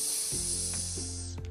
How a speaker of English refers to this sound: It was a long, grey-green snake with pattern markings and a forked tongue. Its mouth was open, and it was hissing.